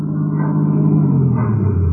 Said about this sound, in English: I believe that's Mrs. Herger's car now, coming around the corner.